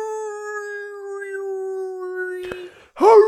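A long, steady wolf howl holds one pitch for over two seconds, then a sharp click and a brief, louder rising-and-falling howl. No speech.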